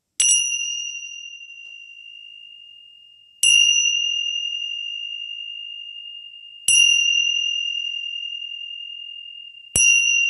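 Four bright, clear strikes of dragon Tibetan tingsha bells, evenly spaced about three seconds apart, each ringing out in a long, pure sustained tone that slowly fades before the next strike.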